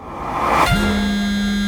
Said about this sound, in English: Back in Samsung's office, J.K. Shin's new Note 3 was buzzing.